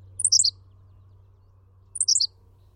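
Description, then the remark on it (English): Two short, high-pitched Henslow's sparrow songs, each a quick hiccuping burst of chirps, separated by a pause of about a second and a half over a faint low background hum. “Henslow's sparrow.”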